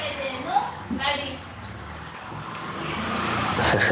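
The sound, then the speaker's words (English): A small scooter passes by, its buzzing motor growing louder and brighter toward the end over a steady hum of road noise, with faint voices in the background. “a little scooter coming.”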